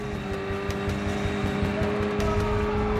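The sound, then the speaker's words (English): A speedboat's powerful motors of around 500 horsepower roar loudly and steadily as it takes off in the Niger Delta, a dense, rumbling engine drone with a sustained tonal hum running through it for the full few seconds, with no voices. “They had huge motors on them, around 500 horsepower. When they took off, well, they took off like lightning, you know.”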